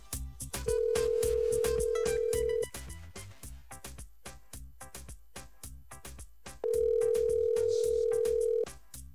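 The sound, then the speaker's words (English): Two long, steady ringback tones of an outgoing phone call, each about two seconds with a pause between, sounding loud and clear over a rhythmic music beat. “Yo, people, you know we got on the phone line”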